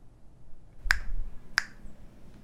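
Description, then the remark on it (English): Two sharp finger snaps, about two-thirds of a second apart, each a crisp bright click over a faint low background hum. “Snap your fingers twice if you understand your instructions.”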